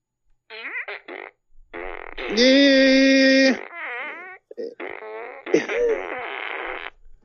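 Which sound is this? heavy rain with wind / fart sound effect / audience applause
fart sound effect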